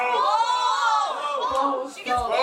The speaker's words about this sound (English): Here's the thing about everyone yelling both. That means that they have less chances to win stuff, you know?